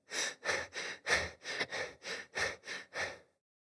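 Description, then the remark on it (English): A person imitates the heavy, labored breathing of running at zone 3 training intensity: about ten quick, forceful breaths in a steady, rapid rhythm, fairly loud, with no talking. “And if you're in zone 3, your breathing will feel like.”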